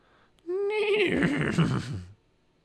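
A single loud horse whinny comes from below in damp, cool, foggy air, opening with a high, rising cry and then breaking into a shaky, fluttering descent before cutting off. No one speaks.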